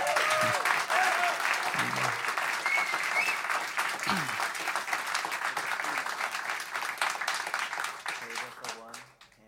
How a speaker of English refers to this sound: And I bet if you clap loud enough, we can coax them into some more songs. How about it?